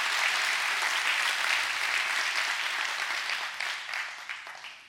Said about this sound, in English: Come on, clap your hands all over the house. That's good stuff. That's good stuff.